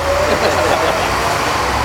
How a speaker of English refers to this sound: there's a truck there.